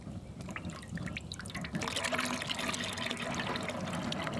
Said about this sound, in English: The sounds of the freshwater spring bubbling right behind the Fort Clatsop, what that sounded like